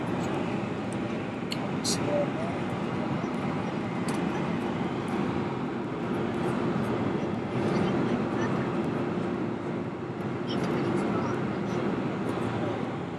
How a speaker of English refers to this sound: I'm actually on an aeroplane in the air.